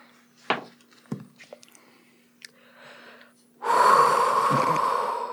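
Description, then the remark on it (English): A dragon expelling breath: a couple of short snorting sniffs, then a loud, sustained rushing blast of air with a hissing, roaring edge that holds steady for about two seconds. “That's right, the sound of breath being expelled in your direction.”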